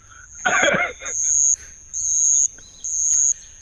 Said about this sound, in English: It was indeed a cricket.